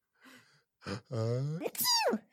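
A high-pitched sneeze sound effect played from a Rodecaster: a soft breathy intake and a rising voiced 'ah' build-up, then a sharp burst ending in a squeaky, falling tail. No one talks over it.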